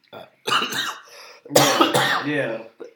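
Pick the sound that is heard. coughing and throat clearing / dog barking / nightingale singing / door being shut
coughing and throat clearing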